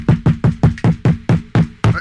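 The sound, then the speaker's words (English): Rapid, insistent knocking on the door of a home in Florida, about nine loud, evenly spaced thuds in quick succession, with no voices. “You should probably go answer the door.”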